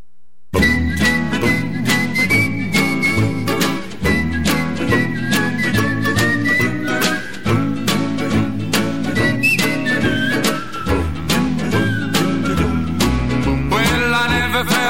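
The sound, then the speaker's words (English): A bright whistled melody glides over a full band playing a bouncy blues song from a record, the whistling steady and prominent throughout, with driving rhythm underneath and no talking. “This is the happiest blues song that I've ever heard. As a matter of fact, you can whistle along to it.”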